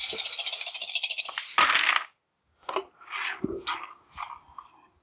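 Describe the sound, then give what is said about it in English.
A loud rattle of a handful of dice shaken for about a second and a half, then a sharp clatter as they are thrown, followed by a few scattered clicks as they tumble and settle. No voices. “That's still a pretty good amount of dice.”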